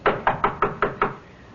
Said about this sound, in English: Leopold, knock on the door. Again.